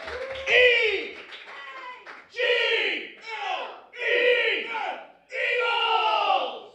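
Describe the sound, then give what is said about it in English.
A crowd roars and cheers in four loud surging waves separated by brief dips, the massed voices rising and falling in pitch like a stadium yelling together. “Wow, I got the wrong crowd for this story.”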